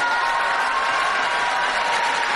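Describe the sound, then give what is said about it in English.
A large crowd of Jewish Americans cheers and applauds continuously after Trump speaks of recognizing Israeli sovereignty over the Golan Heights, a dense, steady roar of clapping and voices that stays loud and even throughout without letting up. “You hear the cheers and applause? And it went on for a while.”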